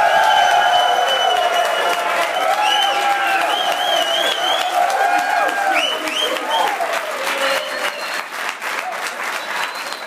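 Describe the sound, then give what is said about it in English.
A live studio audience at the Kappa Alpha Order Province Council, on the campus of Rhodes College in Memphis, Tennessee, applauds steadily with scattered cheers and whoops rising above the clapping, holding loud for about ten seconds before tapering slightly at the end. “What a great crowd. It's a live one.”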